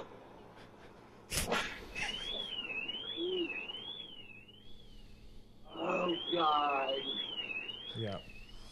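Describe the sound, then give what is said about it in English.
A sharp bang as someone tries to get in through a door, then a high-pitched electronic alarm goes off, warbling steadily up and down for several seconds while a voice and other noises break in over it. “So that was him trying to get into the door, and then that was the alarm goes off”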